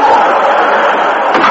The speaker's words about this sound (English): The guard unlocked the big side door and slid it open.